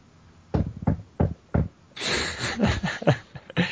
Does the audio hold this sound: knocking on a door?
yes